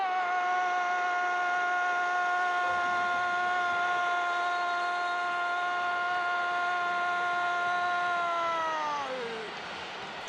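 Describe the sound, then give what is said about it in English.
A loud intro music cue holds one sustained, bright harmonic tone for about nine seconds, then the pitch sags downward and fades out at the end. No one speaks. “So I'm going to put the intro music here.”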